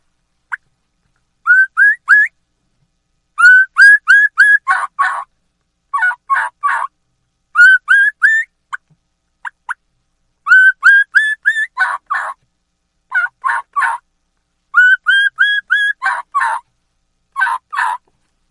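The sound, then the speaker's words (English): A turkey kee-kee run imitated on a mouth call: repeated bursts of three or four rising whistles followed by a few raspy yelps, loud, with short pauses between sequences and no talking. “That's how you do the key-key run.”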